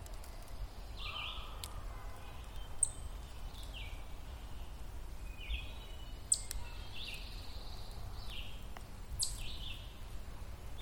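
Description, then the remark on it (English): Scattered bird calls and chirps from the forest canopy in Oka National Park in July 2020, brief repeated phrases over a steady low outdoor rumble, fairly faint with no voices, recorded as the microphone is pointed toward the canopy. “Running this through the spectrogram, I don't see a huge variation, but the intensity of the frequencies made by the bird sounds definitely gets stronger as I point my microphone towards the canopy.”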